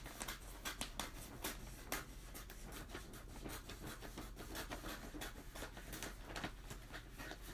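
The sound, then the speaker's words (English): Steady crinkling and rustling of wrapping paper being stretched and folded around a gift, with sharp crisp crackles scattered throughout and occasional scraping sounds, and no voices. “I'm trying to wrap as many gifts as I can with.”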